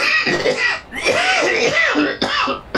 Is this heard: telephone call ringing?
no